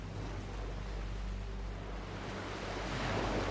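Steady wash of sea water around a small boat, a continuous low rumble with soft surf noise swelling slightly toward the end, with no voices.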